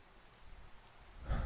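Steady, soft rain hisses throughout, and a low rumble of thunder swells up toward the end, deepening the noise. No voices are present.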